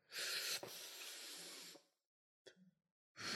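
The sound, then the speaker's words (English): A person mimics smoking, with a long breathy hiss of an exhale followed by a short puff and another brief hissing breath, fairly loud with no talking. “Is that how you do? You inhale your cigarette through your nose?”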